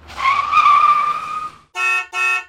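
A loud, shrill screech of car tires as a car brakes suddenly for a child who stepped into the street, lasting over a second, immediately followed by two short, blaring honks of a car horn. No one speaks.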